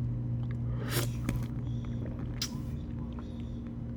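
Wet sucking and slurping on the nib of a water bottle that leaks when sucking puts too much pressure inside it, with a burst of squishy, hissing sips followed by a shorter one, over a steady low hum.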